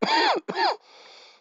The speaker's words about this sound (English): Coughing on COVID. Ha! Itchy esophagus.